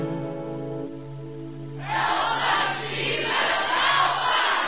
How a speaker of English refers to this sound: One day when I was home, I heard a mighty roar. There were 1,000 people right outside the door.